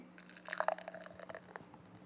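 Beer is poured harshly into a glass, a bubbly splash with gurgling trickles, rough and a bit forceful, lasting about two seconds with no talking.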